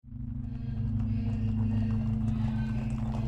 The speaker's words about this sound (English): It's 1 a.m., and Louis Diemschutz, a jewelry seller, is on his way home in his horse and cart. He can barely see his way through the dark as he turns off the street.